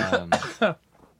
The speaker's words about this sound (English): Bringing my whooping cough back.